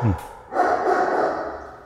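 A dog barks, a short sharp yelp followed by a longer, drawn-out bark, moderately loud.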